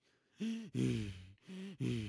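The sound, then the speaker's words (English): A voice imitates the loud, wheezing breathing of an old lady standing in an elevator: two rasping in-and-out breath cycles, each inhale and exhale strained and whistly, in a steady heavy rhythm. “I look over and she's just standing there, but she's breathing like a gosh darn radiator.”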